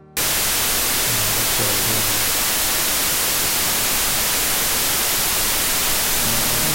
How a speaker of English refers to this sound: Still got the static. Still got the static.